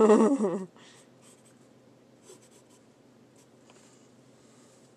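Soft, continuous scratching of a pen drawing on paper, with faint irregular strokes throughout, preceded by a brief loud tonal burst in the opening moment.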